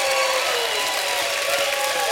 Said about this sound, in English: If God has blessed you like that, you want to give him a shout of praise and a hand clap.